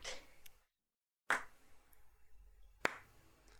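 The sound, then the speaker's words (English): A slow clap for a stage performance: three sharp, crisp hand claps spaced over a second apart, each ringing briefly, with a short stretch of silence after the first and no voices. “Slow clap. Yes. Really, for that. A slow clap.”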